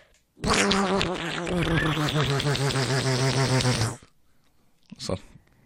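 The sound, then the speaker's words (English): A person imitates a duck with one long, loud, raspy quacking buzz that flutters rapidly for about three and a half seconds, then adds a brief short burst after a pause. “Then he summons animal friends by making noises like, I'll do my version.”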